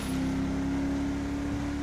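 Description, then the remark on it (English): A loud, steady roar of a car driving at 70 on Polito Boulevard through the outskirts of a town, with a constant low engine hum, unchanging throughout, with no voices. “This car is going 70 on Polito Boulevard.”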